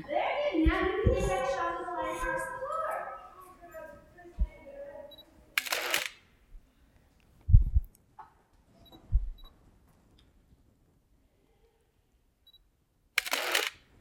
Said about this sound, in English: You hear the beeping. Even though it's a manual focus lens, because it has autofocus in the body, you do hear that you're in focus, which is very nice.